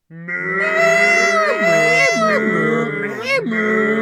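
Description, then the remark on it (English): A herd of 28 cows standing outside a front door mooing together, long drawn-out bellows overlapping into a loud, continuous chorus that never pauses. “It's a pack of 28 cows.”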